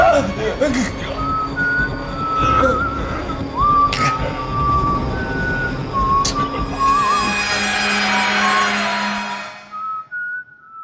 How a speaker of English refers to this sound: She whistles, honey, as she walks away. She whistles.